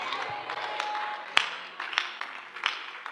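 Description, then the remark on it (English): An audience claps in a dense, steady wash of hand claps, with a few louder, sharper claps standing out at irregular moments over the continuous patter. “You better clap.”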